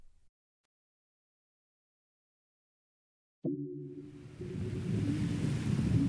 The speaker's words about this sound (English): The waves aren't too big, which is fun. Yeah, they're pretty good beginner waves too. They're also far out.